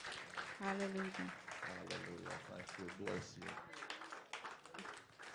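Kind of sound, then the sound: crowd, audience applause and clapping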